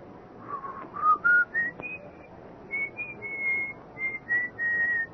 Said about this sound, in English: a little after midnight, just after I'd gotten into bed, I heard it, the whistling. It was an old tune,